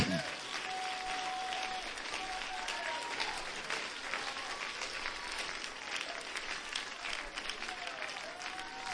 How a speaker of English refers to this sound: Clap your hands and give the Lord praise one more time.